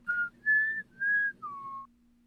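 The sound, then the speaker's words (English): Someone whistles a short four-note tune: steady, clear tones with brief gaps, the final note dropping lower, over a faint low hum. “You didn't mention the fingers in the multiple choice, though. You just mentioned the whistle.”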